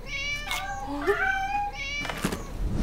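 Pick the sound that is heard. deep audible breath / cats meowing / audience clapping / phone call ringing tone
cats meowing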